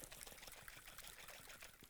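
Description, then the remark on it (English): Water sloshes and churns inside a jar of river water being shaken, a steady, busy liquid rattle that continues for a couple of seconds, fairly quiet, with no voices. “Everything was settled before I shook it, right? But now that I shook it, the casing is still objectively, it has the same form, right?”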